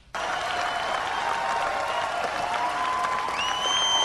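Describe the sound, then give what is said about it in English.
Sustained audience applause, a dense steady wash of clapping that starts abruptly and holds at an even, loud level throughout, with a few high whistles or cheers rising near the end. “You hear the prolonged applause?”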